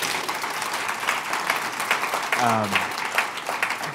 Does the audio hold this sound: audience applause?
yes